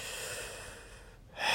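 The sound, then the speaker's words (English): A raspy throat clearing by a person a little congested from allergies, with breathy, rough noise, a brief pause, then a sharper final burst. No talking. “I'm clearing my throat.”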